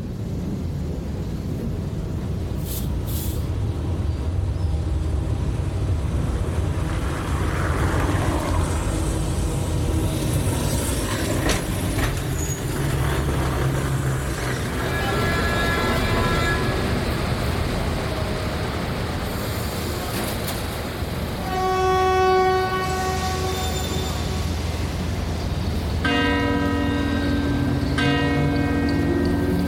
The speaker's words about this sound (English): Get out your change. Michael Rusenberg and Hans Ulrich Werner recorded this soundscape of the Lisbon-Portugal tram, the city's streetcar system.